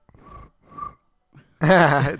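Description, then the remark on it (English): A voice imitates a cricket with two short, buzzy chirps in quick succession, followed by a brief pause before someone else's louder voice breaks in. “That was a pretty good cricket.”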